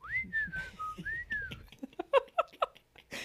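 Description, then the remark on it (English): Someone whistles a short, gliding tune with rising and falling pitch, then a few quick, sharp chirpy notes, moderately loud with no talking. “I didn't even know I whistled until you were like, you whistle every morning.”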